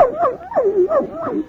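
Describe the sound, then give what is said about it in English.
A small, friendly puppy yips and whimpers, a quick run of excited, wavering whines with short sharp barks mixed in, loud and continuous with no one talking. “Hello there, pup. Well, aren't you a friendly little thing?”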